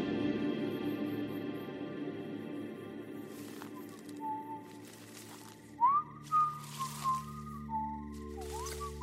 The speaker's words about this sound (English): Just outside the house, the whistling had started again, as perfectly clear and audible as if it was happening right next to your ear. It moved along with loud, crunching footsteps outside the house, seeming to move one way and then another.